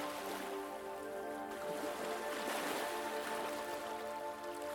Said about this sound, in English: The sound of the mighty ocean presents itself as a deep roar and a low hissing and splashing. Waves have been crashing on this landscape for thousands of years.